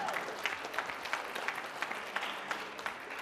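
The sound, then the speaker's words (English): An audience applauds itself steadily for a few seconds, dense overlapping claps forming a bright, sustained wash of sound with no one talking over it. “Yeah, you can clap for yourself.”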